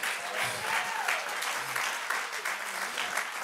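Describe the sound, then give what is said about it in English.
A church audience claps hands unto the Lord for a few seconds, a dense, even wash of many hands clapping at once, with faint voices murmuring underneath. “Oh, let's clap our hands unto the Lord.”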